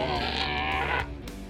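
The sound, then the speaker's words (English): A loud, deep frog croak from a pulsating throat sac, heard as wind blows through grass, holds for about a second as one rough, buzzing call, then drops away abruptly into a quieter low rumble. “This time, an ill wind wicks through the grass, and you hear his throat sac pulsate with a loud, preternaturally loud croak.”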